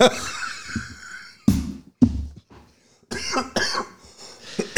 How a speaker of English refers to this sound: There's a cough.